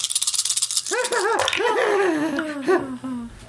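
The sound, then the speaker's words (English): A bright, rapid clatter of many dice, including red and yellow ones, rattling and tumbling for about a second during a tabletop game roll, then a voice makes wavering, sliding vocal sounds that fall in pitch while faint clicks continue beneath. “So many dice.”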